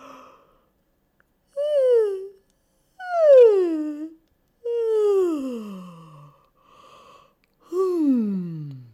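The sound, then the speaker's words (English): A series of four or five drawn-out, voiced yawns, each sliding downward in pitch and lasting about a second, separated by brief pauses, with no talking. “Yeah, how about a yawn?”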